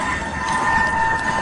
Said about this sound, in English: And you can hear the train is trying to stop. It takes like a big freight train could take a mile for the train to stop. And you can hear the brakes. You can hear the squealing of the brakes.